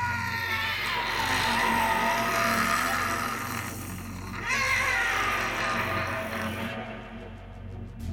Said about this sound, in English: The monkey head, now the size of a beach ball, opens its mouth and lets out a horrible roar of triumph.